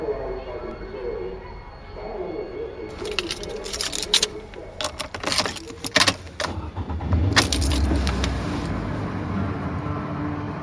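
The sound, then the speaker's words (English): Keys jangle in several bright, clattering bursts as someone climbs into a car, with shuffling and a soft thud over a low, steady rumble. “The moment I get in the car, I start commenting on what I remember, like automatically, like on cue.”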